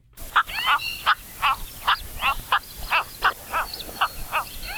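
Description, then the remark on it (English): Harsh, throaty croaks from cattle egrets, bright white birds with long yellow legs and bills, repeat about three times a second, a busy overlapping chorus of birds calling steadily with no voices present. “Cattle egrets are those bright white birds with long yellow legs and bills.”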